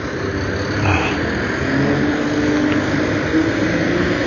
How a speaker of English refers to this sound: So, we have a dump truck. Oh, maybe it's about to move.